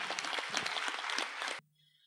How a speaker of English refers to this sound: This gentleman's thought is on music, so his energy flowed. It manifested into beautiful violin. Give a big clap to Swamiji again.